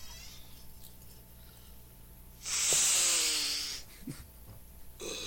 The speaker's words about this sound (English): What were you sniffing? I just heard a door open, and you're like... I leaned back in my chair, and then just... Oh, that was just your chair? This is my chair, yeah.